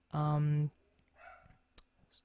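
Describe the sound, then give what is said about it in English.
A dog named Coco lets out one loud, drawn-out bark, followed by a few fainter, softer yelps and small clicks against otherwise quiet. “now my dog's barking.”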